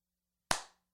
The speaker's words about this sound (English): Will you do a big clap? No, no, no. Like slow. Like slow and big.